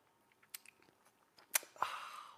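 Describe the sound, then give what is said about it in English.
Faint mouth clicks and a couple of sharp taps, like a mug touching lips, followed by a brief, louder slurping sip that trails off. No one speaks. “Get ready for the best thing that's going to happen today all over the world, the simultaneous sip.”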